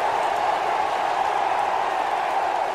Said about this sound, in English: The crowd roars. And then they roar louder as they realise who scored the goal.